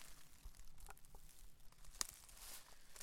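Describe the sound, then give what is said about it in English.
Soft, crackling crunches of footsteps as people walk outdoors through dry leaves, a few sharper snaps standing out against a steady rustling texture. No one speaks. “Another thing about your quiet theory is that there's no way to be quiet out here. Because the leaves are so loud? Yeah, we're crunching around like some baboons.”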